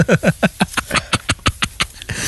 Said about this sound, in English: Quit blowing his nose.